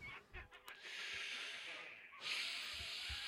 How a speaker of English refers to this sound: Steamboat Willie's doing the creepy pig thing again. Oh, God. It's all right. While you were asking, the cat was going, wow, wow.